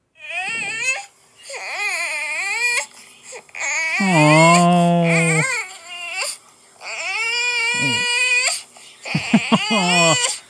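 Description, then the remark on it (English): A baby girl cries and wails in long, strained bursts, high-pitched with wavering harmonics, broken by brief gasps and grunting pauses, as if straining to poop. No one else speaks. “This is what our daughter sounds like when she doesn't poop, but really needs to.”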